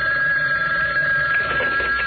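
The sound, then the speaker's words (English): A telephone rings steadily with a bright, continuous electronic tone, fairly loud, with no voices over it; it is a call from the Mayor, ringing inside Midland City Hall. “It's the Mayor, Commissioner. How are you, Mayor? On the phone, I mean.”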